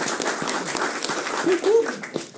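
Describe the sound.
A brief round of applause welcoming a guest, a dense crackle of many hands clapping at steady loudness, with a voice briefly heard over it partway through.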